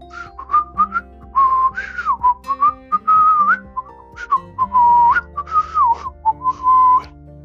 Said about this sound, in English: Or maybe not too much of the whistling. I'm not so sure you're good to be praying a little bit if you're thinking about that melody.